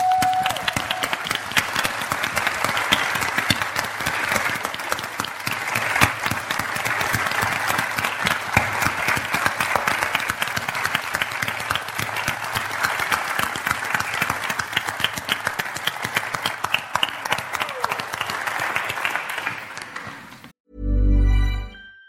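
audience standing ovation applause

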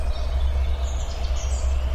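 bird calling outdoors

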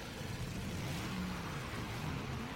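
car engine revving

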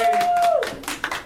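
clapping applause

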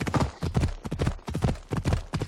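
horse hooves clip-clopping

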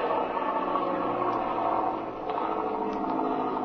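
airplane engine starting

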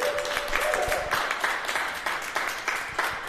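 audience round of applause

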